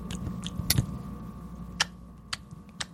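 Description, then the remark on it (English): Crisp chewing by several people taking turns one at a time, a handful of separate moist crunches spaced irregularly over a low background hum, each bite a distinct click rather than a steady rhythm. “Okay, then individual chews.”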